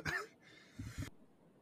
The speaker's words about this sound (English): A little coughing fit there.